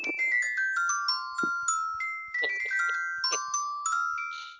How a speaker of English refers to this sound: Little known fact, that's actually the ringtone that Paul Giamatti has, but his cockatoo sings it.